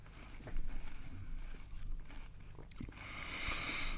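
Close-up crunching of someone biting and chewing a crisp biscuit, with a few sharp crackly bites spread over a few seconds and a steady low background hum.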